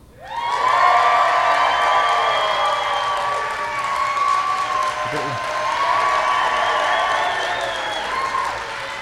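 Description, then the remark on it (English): A crowd of voices cheers and shouts together in a sustained, loud roar lasting several seconds, with high excited yells riding over the steady wash of noise. “They're going to cheer for you.”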